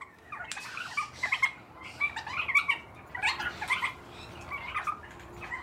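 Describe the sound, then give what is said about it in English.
Captive-bred birds in an aviary practice their species' song: a series of short, bright, warbling phrases, five or six bursts in quick succession, over a steady low background hum, with no talking. “From the time these birds hatch, there's culturally appropriate song playing from sunrise to sunset.”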